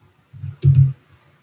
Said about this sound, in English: I heard your typing, but I didn't hear anything out the mic.